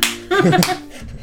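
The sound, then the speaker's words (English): A couple of quick, soft slapping smacks as something slaps against a man's leg while he comes down the stairs, with a brief voice sound mixed in. “It's just like you can hear the slap against his leg as he comes down the stairs.”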